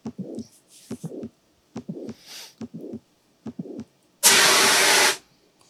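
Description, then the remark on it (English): A mitral valve prolapse heartbeat recording from an EMT prep library: muffled thumps in quick uneven pairs with a faint whooshing murmur between them, then a loud burst of steady hiss near the end. “Name that heartbeat. That's a mitral valve prolapse.”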